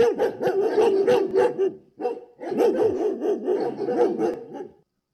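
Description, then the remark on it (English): A German Shepherd barks loudly in rapid, repeated bursts, pausing briefly before resuming an energetic run of deep barks with no talking. “That was indeed A German Shepherd.”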